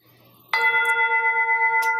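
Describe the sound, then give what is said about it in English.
A single meditation timer chime, sounding at the end of a 15- or 20-minute meditation, strikes clearly after a quiet moment, then rings on with a steady, gently pulsing bell tone that sustains without fading. No one speaks. “And when the 15 or 20 minutes are done, the chime sounds and I stand up.”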